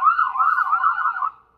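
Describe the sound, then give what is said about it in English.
Sirens of four police cars going by wail with a rapid, wavering pitch, loud, sounding steadily for over a second before cutting off abruptly. No voices are heard. “There's four police cars going by right now, so it's a bit loud.”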